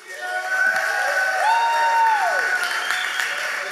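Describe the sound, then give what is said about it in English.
A crowd applauds and cheers loudly and steadily for the women standing up in the audience, with a sustained whistle and scattered whoops rising over the dense clapping throughout. “Give them a round of applause. Shout them down.”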